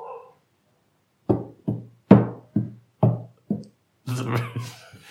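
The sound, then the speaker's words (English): Six sharp, hollow knocks in an uneven clip-clop rhythm, fairly loud, imitating a horse's hoofbeats as a sound effect, followed by a brief rougher, noisier burst of sound. “Very stiff-legged horse, I think. But where are your coconut halves?”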